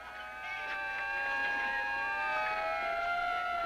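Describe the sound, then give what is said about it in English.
An old fire alarm siren holds a steady, reedy tone rich in overtones, its pitch drifting and wavering slightly as it drones on at an even, moderate loudness with no voices. “Man, alarms were so... Alarm? No, limp-wristed almost, before digital speakers.”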